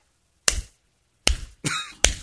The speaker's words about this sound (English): I don't know if it'll come up across the radio, but this is how I was clapping in his ear.